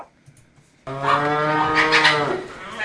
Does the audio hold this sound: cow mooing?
yes